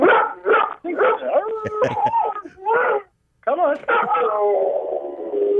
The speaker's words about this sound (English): There you go. Yeah. I love a singing dog. That's a cool dog. What kind of dog is that? What kind of dog is Bogart? He's a pit bull. Sing. There you go. Come on. Sounds like he's got some hound in him. He does. Yeah, he's a blue pit.